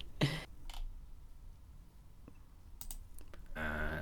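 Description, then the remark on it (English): Slow, sparse keystrokes on a computer keyboard typed with one hand while the other holds a microphone, a handful of separate clicks with long pauses between them, fairly quiet, with no talking. “I'm typing with one hand.”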